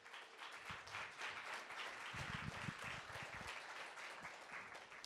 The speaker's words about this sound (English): Could we just give her another really big, round, hearty round of applause?